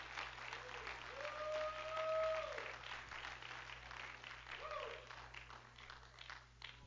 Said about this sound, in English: Come on, if you believe it, why don't you clap your hands to the Lord?